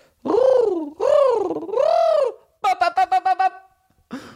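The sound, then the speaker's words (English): A person imitates a pigeon cooing: three drawn-out, swooping warbles, then a quick stuttering burst of about six short coos and one brief final note, loud, with no other sounds. “My exciting pigeon noise.”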